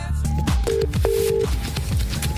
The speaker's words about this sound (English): You heard a bit of ringing there. That's because I'm calling